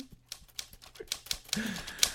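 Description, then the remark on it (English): A typewriter sound effect: rapid, forceful clacking, a quick run of sharp key strikes at an uneven rhythm, fairly loud, with a brief bell-like ring and carriage sound near the end. “Oh, it's the aggressive, overly angry typewriter. That means it's time for headlines.”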